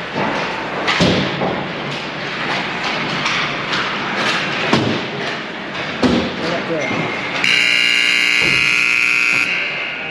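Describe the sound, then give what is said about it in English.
A loud arena scoreboard buzzer, heard from right near the scoreboard, blares for about two seconds near the end to signal that warm-ups are over and the game is about to begin, cutting through a busy crowd hum with scattered thuds and murmured voices before it. “All right, and that buzzer means warm-ups are over and the game is about to begin.”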